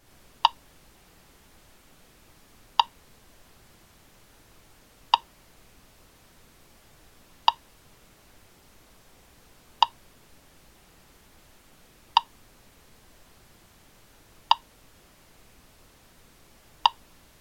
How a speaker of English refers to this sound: Okay, so listen to the first 2 clicks, and then try and clap along perfectly in time for the next 6. Ready? Here we go.